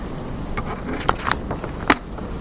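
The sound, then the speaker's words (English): Rain on a tin roof, a steady hissing wash of patter broken by a few sharper, louder metallic taps, with no voices. “It's noisy up here when it rains on that tin roof, isn't it?”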